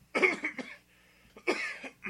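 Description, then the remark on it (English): A person clears their throat into the mic, two rough, voiced bursts separated by a short quiet pause, with a third starting just as it ends. “This is me clearing my throat.”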